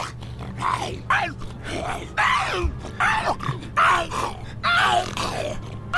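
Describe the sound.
A man's voice growls and groans in repeated guttural bursts, imitating a snarling zombie while role-playing as a zombie in a video game, loud with a low steady hum underneath.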